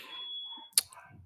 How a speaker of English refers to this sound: Our fire alarm is going off in my house. And now my dog is going crazy. I don't know if y'all can hear that, but I can hear it.